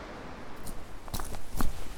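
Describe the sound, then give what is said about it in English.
Footsteps crunch along a woodland path at the landslip, heading towards Ventnor, about four uneven steps at a slow walking pace, each a short scuffing crackle over a quiet, steady outdoor hush. “I'm walking through woodland at the landslip.”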